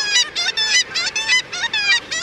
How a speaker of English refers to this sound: The cry of the kittiwake rings out across the northern ocean. Kittiwakes were well known to even the earliest northern seafarers. Named for its rhythmic calls, the black-legged kittiwake, as it's known in North America, is a dapper oceanic gull.